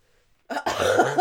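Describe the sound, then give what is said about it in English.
A person coughs: a short harsh burst followed by a longer, rougher cough that trails into a throaty rasp after a moment of silence. “Before you coughed, it looked like what I said rattled your world.”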